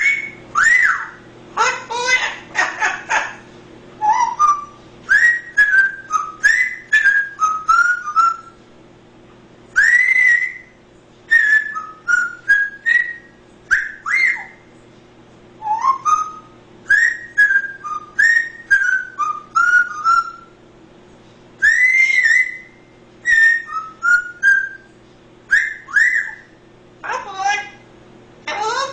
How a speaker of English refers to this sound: Let's move from someone's pet parrot singing the Andy Griffith Show theme song